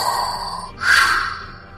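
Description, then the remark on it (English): Heavy, labored breathing: a long raspy draw of air followed by a louder, hissing pull, like breath through a mask, with no talking. “Is what makes it so hard for me to catch my breath.”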